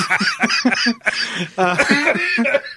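A person coughs close to the microphone in a loud, repeated fit of harsh bursts, with a brief pause midway before another round of raspy coughs.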